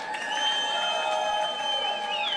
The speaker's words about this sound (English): Last but not least, can we give another round of applause for Mr. Chris Carter?